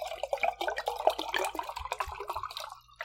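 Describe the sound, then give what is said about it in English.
Wine glugs steadily into a glass for about three seconds, a bubbly, uneven gurgle of liquid with quick irregular pulses and no voices over it. “You're like glugging yours in.”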